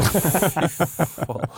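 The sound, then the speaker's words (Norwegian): A person imitates a snake's hiss, a steady sibilant hiss broken into quick rhythmic voiced pulses for under two seconds. “Det var mer en slange, altså.”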